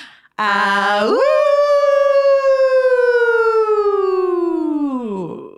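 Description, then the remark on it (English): A couple of people howl together like wolves right after saying "until next time", one long, loud howl that swoops upward, holds steady for several seconds, then slides down and fades out. “And I think that's it until I'm supposed to say until next time, and then we're supposed to howl.”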